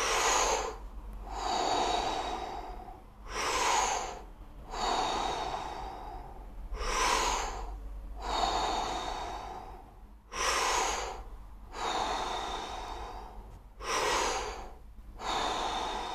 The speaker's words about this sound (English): We are almost done. Keep breathing. We take 10 more breaths. Here we go.